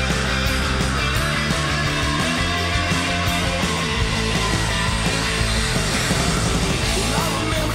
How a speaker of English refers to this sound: That was a long motherfucking scream